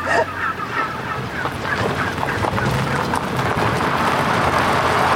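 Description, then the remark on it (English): A dense, continuous chorus of gobbling and squawking from a large flock of about 1,000 heritage breed wild turkeys that have broken through an electric fence, many birds calling over one another at steady loudness with no clear pauses. “The turkeys broke down the electric fence. You were almost assaulted by 1,000 turkeys.”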